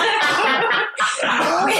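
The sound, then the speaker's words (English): Fairly loud coughing muffled into a duvet in a shared bed in a daughter's bedroom, two rough, breathy bursts separated by a brief pause, with no talking. “keeps coughing into the doona.”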